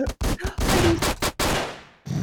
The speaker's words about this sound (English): Gunshot, gunshot.